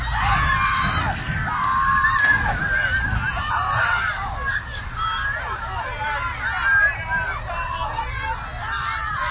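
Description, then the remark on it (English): An agitated crowd at an animal export protest in Ramsgate shouts and screams continuously, several voices overlapping, over a steady low rumble of a lorry's engine as the lorry crushes a man's bike. “Footage has emerged of the moment a man's bike was crushed by a lorry during an animal export protest in Ramsgate.”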